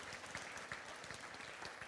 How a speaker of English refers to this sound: Someone give God a hand clap for that.